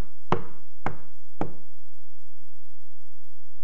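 Three firm knocks on a door, evenly spaced about half a second apart, loud, each with a short hollow resonance, followed by quiet.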